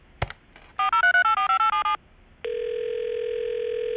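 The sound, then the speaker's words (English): A phone handset clicks, a quick run of dialing beeps follows, then a steady electronic ringing tone hums on the line as an outgoing call is placed to a man who is away at a conference. Nobody speaks. “Can you get him on the phone? Sure. He's at a conference, but let me try and get him.”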